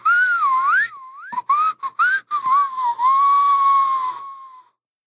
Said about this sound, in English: What kind of whistle is that? No. I'm trying. At least they know who's whistling,